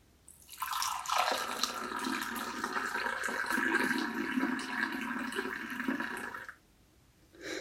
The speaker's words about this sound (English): That, listeners, is the sound of chai pouring into cups.